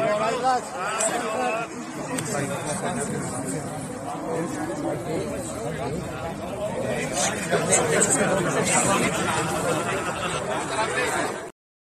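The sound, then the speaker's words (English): Dense, continuous chatter from a large crowd of thousands gathered on the main street in Knowsley, many overlapping voices blending into a steady, loud murmur for the whole stretch with no single speaker standing out. “That's a very large crowd of people who of course, gathered there.”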